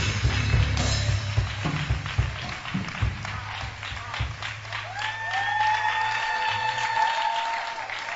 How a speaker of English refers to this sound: Keep clapping for the Winga Choir. Ah, where are the Winga Choir? Oh, keep clapping for them as they come. It's a joint service of some branches and the first service. Please clap for them as they are coming.